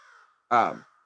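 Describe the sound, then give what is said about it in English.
A single loud, harsh crow caw sound effect, played from a comedy button, bursts out abruptly and fades within half a second, preceded by a faint hum. No one speaks. “I'll hit the crow for old time's sake.”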